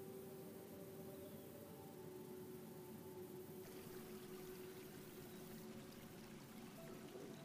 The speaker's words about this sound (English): In the distance, you hear a trickle of water like a stream.